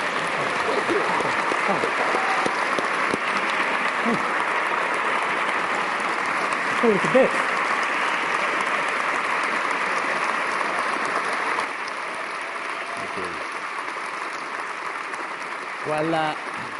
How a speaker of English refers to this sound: Would you join me in giving a round of applause to both our guests today? Thank you.